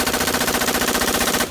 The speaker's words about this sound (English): So the Marines launched the M27. It's essentially a rifle built for sustained automatic fire. Think a beefed-up M16. The lighter weapon could use standard-issue 30-round magazines, which it could dump in under 3 seconds.